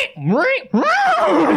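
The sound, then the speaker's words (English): A loud horse whinny, apparently imitated by a human voice: a swooping, rising-and-falling cry, a brief break, then a longer wavering call that trails downward. “Oh my God, the horse is wearing the experimental boots and it's gotten into the reactor!”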